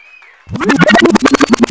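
Audience applause bursts in after a brief quiet moment with a faint high tone: loud, rapid, steady clapping mixed with cheering voices.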